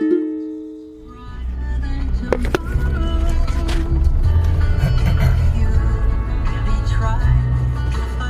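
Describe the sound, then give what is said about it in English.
Steady low road rumble from inside a moving car, with scattered clicks and knocks; a bit of radio music plays at the very start, then is turned off, leaving the engine and road drone. “I am driving in the car, so we'll just take it easy.”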